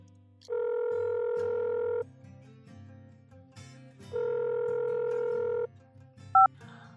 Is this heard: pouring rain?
no